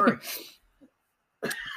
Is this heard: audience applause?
no